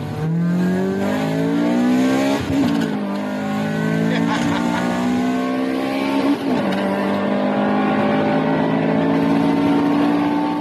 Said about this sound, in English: Because at that point, this normal aspirated engine, tuned between 160 to 170 brake horsepower, was the engine to own. It's high revving. As you go past 5,000, it screams. It sounds like a motorcycle engine if it's well tuned.